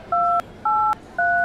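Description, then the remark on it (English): Three telephone keypad tones beep in quick succession as 911 is dialed for an ambulance, each a steady dual-pitched electronic note about a third of a second long with brief gaps between, over a faint hiss with no talking. “I am genuinely concerned for your life right now, and I think someone should call you an ambulance.”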